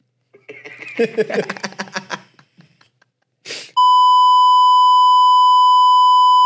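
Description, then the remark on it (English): A loud, steady censor bleep tone, from a beep button pressed to beep out a speaker's talk, starts abruptly and holds for nearly three seconds, cutting in right after a burst of excited, overlapping talk and a brief noisy rustle. “She already pressed the beep button when she heard you talk.”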